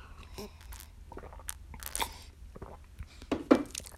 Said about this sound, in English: And I got my Barbancourt, which is a Haitian rum. It's delicious. And a strawberry soda from strawberry rhubarb soda from Trader Joe's. So let me get a sip.